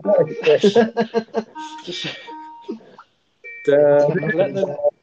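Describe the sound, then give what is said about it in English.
An electronic Skype incoming-call ringtone chimes in a short melodic pattern, partly overlapped by people talking, with a brief pause before the tone returns. “What is that noise? That is Skype.”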